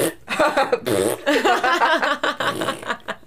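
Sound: voice imitating farting sounds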